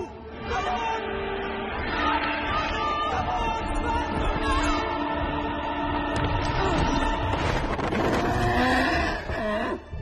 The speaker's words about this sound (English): For some reason, it's left in the film. Mm. One of the noises the horse makes really sounds like he's saying Benny Hill.